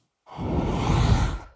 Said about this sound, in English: We'll use a technique where we'll actually blow into the mic. So, okay, Darren, I'm going to try to do a little whoosh by on this mic.